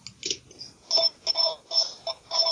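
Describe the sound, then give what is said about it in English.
A phone rings in repeated electronic trilling bursts with a steady, warbling high-pitched tone, each burst separated by short gaps, fairly loud and with no one talking over it. “I'll just let it ring, and then we can resume.”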